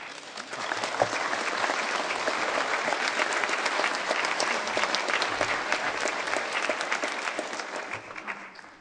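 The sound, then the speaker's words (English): A crowd claps steadily after a talk, dense applause from many hands at an even level for several seconds, with no voices standing out. “They never clap after my sermons, I don't tell you.”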